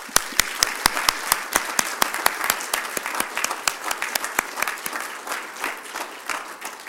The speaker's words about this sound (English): Hey, man, that's a great round. I could feel that. That's a great round of applause.